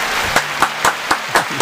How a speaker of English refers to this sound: Real claps right there too.